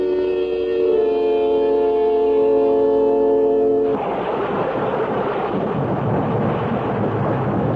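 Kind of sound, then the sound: nature, rain with thunder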